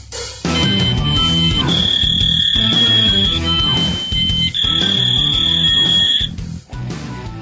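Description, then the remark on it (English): A fax machine running as it receives incoming news items, giving off loud, shrill, steady electronic tones that hold and shift in segments over a dense, rumbling lower background, with no talking. “Yeah, the fax machine has been running.”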